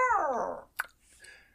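Vicious puppies attacking a woman yelp and whine, one high, sliding cry falling in pitch, followed by a sharp short bark-like snap and a fainter, thinner whimper trailing off, with no talking.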